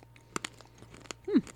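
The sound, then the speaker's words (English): Dry crunching as pastel-coloured, chalk-like hard candy is bitten and chewed: a quick series of sharp, crackly bites followed by a brief muffled vocal sound near the end. “They look like a big fat thing of chalk that's been sliced into tiny pieces. Ready? Okay, I'm ready. Oh, very crunchy.”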